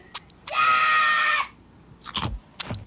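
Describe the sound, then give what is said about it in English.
A boy lets out one loud, sustained, high-pitched scream lasting about a second, then two brief rough noisy bursts follow after a short pause. No talking. “Dad says if you make a scream, you're dead meat.”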